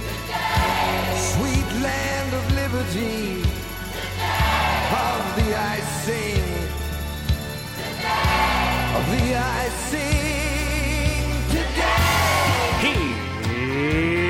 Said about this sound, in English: And now, my country, 'tis of thee.